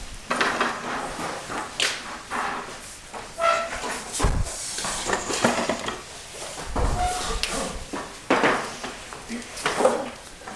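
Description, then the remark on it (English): Chairs scrape and clunk across a hard floor as a group moves their chairs back to stand, several at once, in an irregular burst of knocks and drags lasting several seconds, with faint voices murmuring underneath. “Could you stand up right here and could you guys all move your chairs back, please?”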